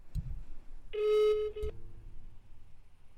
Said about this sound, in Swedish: Nu ringer hans jobbtelefon. Nej. Ja, om han paddlar kan han inte svara.